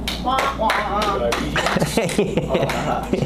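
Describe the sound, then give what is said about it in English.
A group of people clapping, with a dense stream of sharp, overlapping claps running steadily throughout while voices chatter and call out underneath. “but don't forget, with that clap, we get some eighth graders that might be coming in.”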